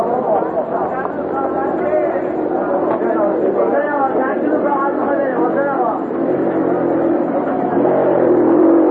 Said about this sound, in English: And people go roaring right through these little passageways on motor scooters and so on. Just go roaring through.